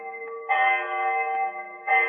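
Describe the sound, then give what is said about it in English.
A clock bell tolls the hour on a rainy night in Saxe Coburg Square, two resonant strikes a little over a second apart, each ringing on with a rich, sustained hum. No voices are heard. “I remember the hour was striking.”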